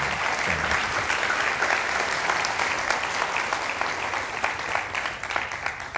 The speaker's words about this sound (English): Big round of applause.